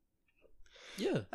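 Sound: sneeze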